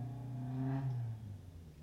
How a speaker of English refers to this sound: Sounded like... I wonder if it was my homeboy on the other street. It was a Lexus. Kind of sounded like a 240.